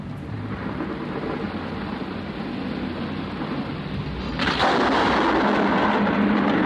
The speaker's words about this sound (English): A mighty thunderclap broke my deep slumber, and I looked around to see where I was.